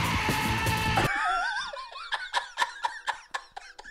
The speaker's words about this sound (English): There's a bunch of tracks of him screaming his fucking head off like that. And I was like, God damn, dude, this guy had to get some shit out.